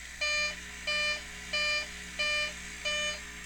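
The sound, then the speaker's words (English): A cockpit landing-gear warning beeps five times in a steady rhythm, each bright, buzzy tone lasting about a third of a second, over a constant low engine hum. “And fine, that beeping's annoying me, gear down.”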